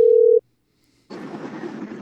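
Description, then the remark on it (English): A loud, steady telephone dial tone, as a call is placed to people driving home in LA traffic from the Rams game, holds a single mid-low pitch for under half a second and cuts off, followed by a brief silence and then a rough, continuous rush of line noise. “Well, we're actually gonna call them and see how they're doing in traffic right now, coming home from the Rams game.”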